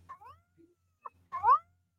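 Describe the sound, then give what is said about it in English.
A cat meows: a short chirpy call, a brief pause with a tiny squeak, then a louder, drawn-out rising meow near the end. “Hey, you big purr.”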